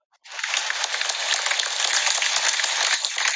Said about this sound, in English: That's our crowd clapping